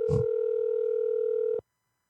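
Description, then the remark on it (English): A single steady electronic ringback tone from an outgoing phone call to a Discord number, holding for about a second and a half before cutting off abruptly into silence, with a brief muffled noise at the start. “If this person doesn't ask, we'll call them.”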